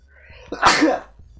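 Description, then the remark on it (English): A single loud sneeze with a quick sharp intake and a bursting, breathy release, standing alone with no talking around it. “Just a sneeze sound.”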